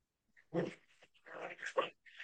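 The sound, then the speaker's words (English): A puppy lets out a few short whimpers and low growly yips in quick, uneven bursts, with brief silences between them and no talking. “Guys, I'm gonna apologize for the weird sounds in the background. I have a puppy.”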